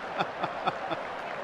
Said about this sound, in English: And then arms raised to the heavens, acknowledging the applause right around Belrive Oval.